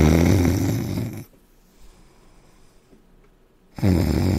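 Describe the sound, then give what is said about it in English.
A voice imitates the loud snoring of a caller asleep on the phone line: a long rasping inhale-snore, about three seconds of near silence, then a second snore beginning. “And it was just, kept sleeping, kept snoring.”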